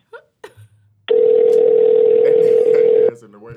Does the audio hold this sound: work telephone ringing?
yes